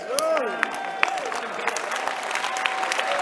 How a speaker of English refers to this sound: Maybe when I say this, they will clap better. As many as are led by the Holy Spirit.